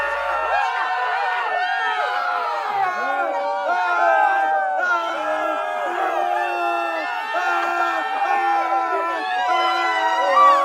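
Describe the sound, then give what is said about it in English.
A live audience screams and shouts together at full volume, a dense, sustained roar of many overlapping voices with high yells and whoops, steady and loud for about ten seconds. “This card means to scream and shout.”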